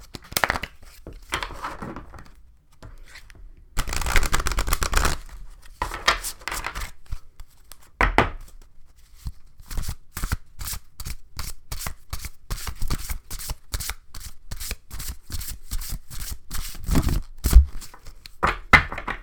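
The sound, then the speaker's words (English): A deck of oracle cards being shuffled, with repeated riffling bursts and soft slaps of cards settling, continuing in uneven waves with no talking. “So let's shuffle.”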